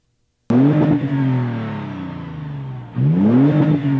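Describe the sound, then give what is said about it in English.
A Toyota car engine, not a four-cylinder, starts abruptly and revs up, pitch climbing then easing down, followed by a second sharp rev near the end. Loud and without any voices. “Oh, it's a Toyota. And it's not a Tacoma.”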